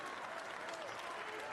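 A large crowd at a wrestling match in a rec center gives a standing ovation, a dense wash of clapping with scattered cheers, sustained throughout.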